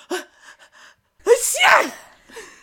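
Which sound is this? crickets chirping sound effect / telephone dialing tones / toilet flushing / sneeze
sneeze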